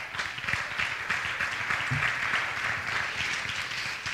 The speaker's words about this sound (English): Welcome to the family. That's exciting. Come on, clap your hands.